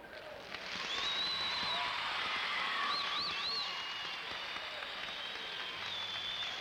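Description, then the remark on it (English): The girls in a concert audience burst into loud, steady applause that builds within a second and holds, dense and even, with high-pitched shrieks and whistles rising above the clapping. “Would all you girls see how much applause you can make?”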